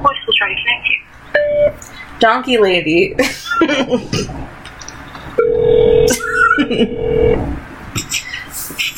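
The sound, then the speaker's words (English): A phone call tone sounds under chatter as someone calls a saved contact: a short electronic beep, then a long steady ringback tone lasting about two seconds, with people talking and laughing. “Now what we're gonna do is we're gonna give it a call and see what happens.”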